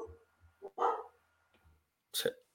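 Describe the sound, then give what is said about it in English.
A pet dog barks twice, a sharp bark followed about a second and a half later by another, with a few softer yips and low background rumble between them. “my dog's kicking off.”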